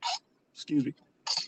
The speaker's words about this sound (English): excuse me. Bless you. Thank you.